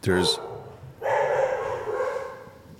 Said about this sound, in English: There's dog.